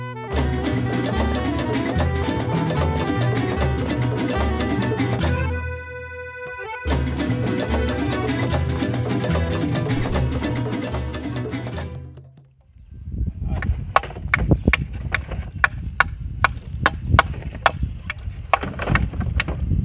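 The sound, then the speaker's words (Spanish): Music plays for the first dozen seconds, then gives way to hammers striking wood as a group of men repair a house one morning in colonia Amparo Sánchez, delegación Sánchez Taboada, Tijuana: a run of sharp, irregular knocks, some overlapping, loud and fairly rapid over a low background. “El sonido de martillos pegando contra la madera llena la mañana en la colonia Amparo Sánchez, al lado de la 3 de octubre en la delegación Sánchez Taboada.”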